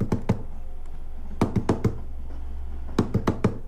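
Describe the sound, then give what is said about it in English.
Sharp knocks tapped out in quick clusters of two to four, a person imitating the clattering rhythm of the DART commuter train on Dublin's rapid transport line over the rails, over a low steady hum. “And they go, that's the dart. That's the noise.”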